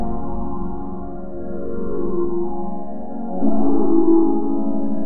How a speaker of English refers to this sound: Big retro synth.